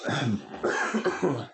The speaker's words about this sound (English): And yeah, this cough should be fucking gone. Well, it better be.